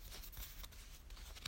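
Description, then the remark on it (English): A deck of cards being shuffled before a card is picked, a continuous papery riffling with quick flicks and soft snaps, fairly quiet and with no one talking. “All right, as you can hear me shuffling, you can't see me shuffling, but I'm shuffling.”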